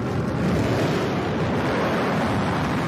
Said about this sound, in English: And then in quick succession, we're going to get the BE-3 engine to restart. The landing gear will deploy, and then the booster will come in for a nice soft touchdown. There are the drag brakes. Engine restart.